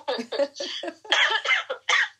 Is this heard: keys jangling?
no